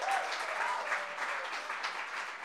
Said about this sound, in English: Please, round of applause for Ellen. Ellen, woo!